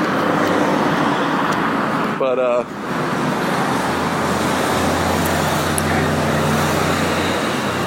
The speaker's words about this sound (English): I know, here I am talking about noise and stuff, and I'm sitting here walking with this thing with fucking motorcycles going by.